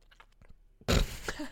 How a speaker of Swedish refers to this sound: Toblerone. Alltså, det är underskattat. Ja, fast jag kommer klippa bort det här, för det är vidrigt. Jag behöver höra någon som smaskar.